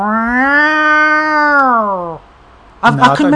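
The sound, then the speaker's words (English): A person imitates a long, drawn-out cat meow, a single sustained wail that sags slightly in pitch near the end. After a short pause, someone starts talking. “I know we had cats, but the cats always used to go out.”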